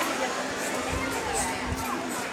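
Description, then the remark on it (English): A dense, steady crowd murmur of many overlapping voices in a busy market in an Asian city, vendors calling out as people sell their wares and hustle, a constant mid-level hubbub with occasional louder shouts rising above it. “So you can hear all the sounds of the people selling their wares, hustling.”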